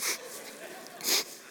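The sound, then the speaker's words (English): Two short sniffs drawn sharply through the nose to check for body odor, one at the start and another about a second later, with a quiet pause between them. “And we do a little sniff test to figure out where this odor is coming from.”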